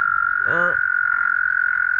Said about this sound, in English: That's an American toad, though, Lex. That's an American toad.